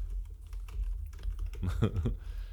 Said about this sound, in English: Sounds like there's a typing bass drum going on. I'm sorry. I was, and I hate it. I'm sorry. Okay. Okay. Guilty. I was looking up the quote